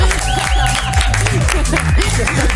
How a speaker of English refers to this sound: Well, no, you cannot guess. You cannot speak before you get the applause.